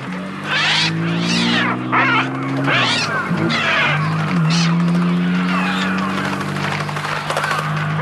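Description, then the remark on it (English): Electronically synthesized bird cries, fabricated on an electronic device rather than recorded from real birds, shriek and squawk in dense, overlapping bursts over a steady low electronic drone, loud and continuous throughout, with no talking. “those aren't actual birds. That's not a recording. That's Oscar Zala on his device fabricating sounds”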